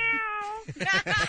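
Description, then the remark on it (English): A single long, drawn-out cat meow heard over the phone with a steady, even pitch, clear, followed right away by a person talking. “Socks on the phone right now on the Kevin and Bean Show. Hey, kitty.”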